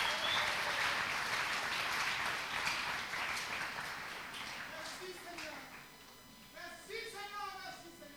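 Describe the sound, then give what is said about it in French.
A crowd claps for a man in a dense, steady burst of applause that gradually thins out, with scattered voices calling out over the last few seconds. “Again, clap for that man.”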